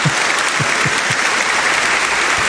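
Sustained applause from a crowd, dense and steady clapping filling the whole stretch at close, loud level with no one speaking over it.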